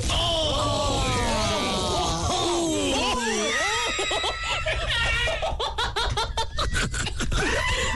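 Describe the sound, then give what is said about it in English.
Laughter rings out, then partway through a dry, crackling crunch starts as Chex Mix is rubbed against a microphone as a sound effect, a rapid gritty scraping that continues beneath more laughter. “That was Chex Mix. That was my sound effect here. And I was rubbing it on my mic, and it just came spewing out.”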